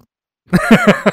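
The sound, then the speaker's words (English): A person makes a fake fart noise with their mouth: a low, buzzy, sputtering raspberry lasting under a second, pulsing about four times, after a moment of silence. “I could do a really mean fake fart.”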